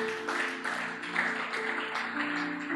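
An audience claps in a steady, dense wash of applause for a few seconds, with sustained keyboard or organ chords holding underneath and no voices.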